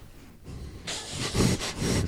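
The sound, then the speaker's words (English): A person imitates the heavy, raspy breathing of an unconscious cat: a run of hissing breaths with snorting pulses, starting after a brief quiet moment and continuing in an uneven rhythm. “Shania is unconscious, so like, the unconscious breath”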